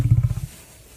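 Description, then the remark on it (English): A lion roars in a quick series of deep, rhythmic grunting pulses, about half a dozen in under half a second, then falls quiet. No one speaks. “That's what a lion sounds like right there.”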